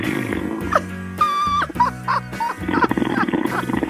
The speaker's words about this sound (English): You had a guy call up that was snoring on the phone, and your laugh was just cracking me up.